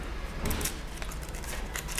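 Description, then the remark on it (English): A paper wrapper is worked and torn off a bottle: a steady, dry crinkling rustle with scattered sharp crackles and small rips across about two seconds, no voices. “trying to slip off the... It's kind of a cool wrapper. I don't want to destroy it too much.”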